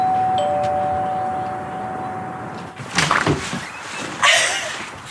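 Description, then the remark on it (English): The doorbell of a woman's house rings with a steady, sustained electronic tone for a couple of seconds, then gives way to a few short, louder noisy bursts. No one speaks. “Timberlake walked up to her house and rang the doorbell”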